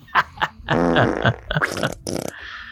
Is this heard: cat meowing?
no